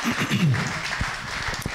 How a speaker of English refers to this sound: Yes, give him a round of applause for his word.